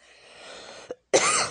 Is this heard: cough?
yes